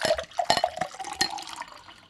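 Sherry pours into a large glass, filled to the top, in a short burst of gurgling splashes and a faint ringing tone, then trails off into soft trickling. No one speaks.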